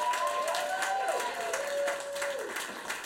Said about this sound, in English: And a round of applause.